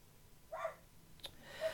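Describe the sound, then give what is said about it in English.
A household dog barks a couple of times, the short barks muffled and faint, with a sharp click between them and no one talking. “Oh, hang on, the dog's barking.”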